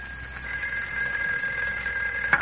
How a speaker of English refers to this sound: A few days later, as Clark Kent and Jimmy Olsen return to the Daily Planet, the phone rings in Kent's office.